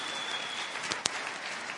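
An audience applauds a team who have just introduced themselves by name, in a steady, dense wash of clapping, with a couple of sharper individual claps popping out near the middle. No one speaks over it.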